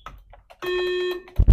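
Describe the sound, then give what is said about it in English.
A single loud, steady electronic buzz from a quiz game buzzer lasts about half a second, preceded by a few soft clicks and followed by a brief thump, with no one speaking. “Again, the buzzer. Struggling with the buzzers.”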